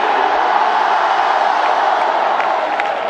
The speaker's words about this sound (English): Somebody scream the name of Jesus one more time in this.